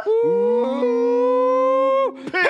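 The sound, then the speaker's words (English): A shouted hog call, "pig sooie": one loud voice holds a long, steady, howl-like note for about two seconds, then breaks into a quick, sharp final syllable. “Should we try one more pig suey?”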